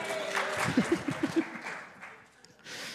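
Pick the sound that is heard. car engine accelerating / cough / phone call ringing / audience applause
audience applause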